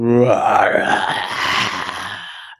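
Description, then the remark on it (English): A person's voice imitates a creature's growl: a low, rasping growl that starts with a strained, harmonic groan and breaks into a gritty, rattling snarl, sustained for a couple of seconds before cutting off abruptly. “And the creature hisses and then begins to growl, but the eyes are still yellow and it still looks dead inside with no soul.”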